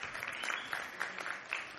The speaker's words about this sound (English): That wasn't a hearty applause. But I appreciate that.